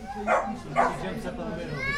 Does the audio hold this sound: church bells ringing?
no